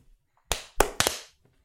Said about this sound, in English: I clapped. Did you get it? Yeah, I did.